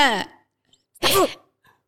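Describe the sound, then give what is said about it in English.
A person fakes a sneeze with their voice: a short voiced lead-in, a brief pause, then a loud, breathy burst, clear, with no other talking. “Would an army person say snafu? Maybe if he sneezed.”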